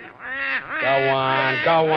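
A duck quacks in a run of nasal, buzzy calls, two or three drawn-out honks of fairly steady pitch, loud and without anyone speaking over them.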